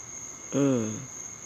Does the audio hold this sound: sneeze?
no